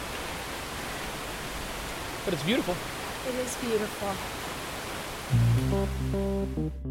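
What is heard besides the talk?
waterfall roaring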